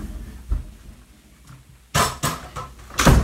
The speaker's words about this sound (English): Let me close this door.